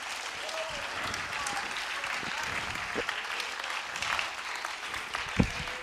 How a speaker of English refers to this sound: Oh, come on, clap your hands unto the Lord.